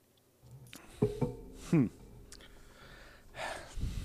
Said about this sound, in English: Let me sip my water and think about that. Now that I know I got some time.